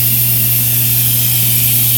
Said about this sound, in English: All right, well, our Instant Pot is finished, so our carrots should be done cooking. We have to release the pressure. It's going to make some noise.